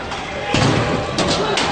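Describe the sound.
A single solid thud of a fist striking a punching machine's pad, sharp, followed by a couple of lighter knocks amid a noisy background with faint voices.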